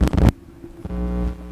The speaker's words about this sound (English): There it is. There's the hum we were talking about.